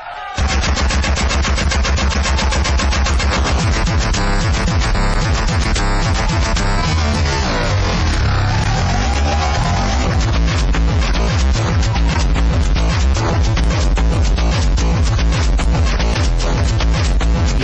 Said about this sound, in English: It's kind of a mix between electronica and industrial.